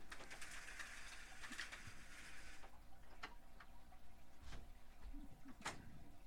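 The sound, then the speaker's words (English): A sliding door rattles and clunks as someone tries to open it from the wrong side, with a few separate knocks and scrapes spaced a second or so apart, ending in a sharper slide-and-thud as it is unlocked, fairly quiet against a steady background hiss. “David tried to open the sliding door from the wrong side.”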